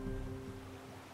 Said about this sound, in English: Alone again, I stood on the shore. The waves gently crashed and receded in the calm night.